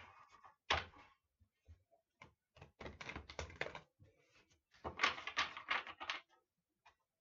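True North Tarot cards being shuffled for a Leo reading: a run of quick, papery riffling and tapping bursts, some louder snaps and soft thumps in irregular clusters, with no voices.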